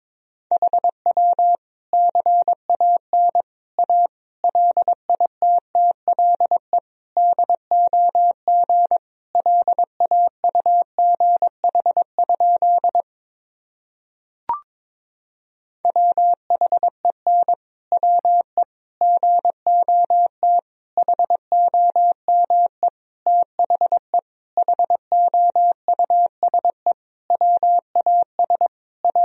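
Morse code sent at 22 words per minute: a single steady mid-pitched tone keyed rapidly into dots and dashes, broken by a short pause with a faint click partway through.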